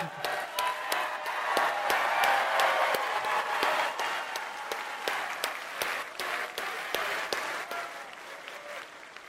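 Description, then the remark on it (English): An audience claps for actor Nick Searcy, who is in the movie, steadily for several seconds, a dense, even patter of many hands with a few sharper individual claps standing out, tapering slightly toward the end. “Nick Searcy is also in the movie, and if you clap for him, I'll walk off the stage.”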